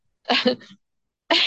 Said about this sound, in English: Did you have to mute yourself because I made you cough? I did. I thought that would be polite. I thought it would be better than if I was coughing really loud in front of everyone.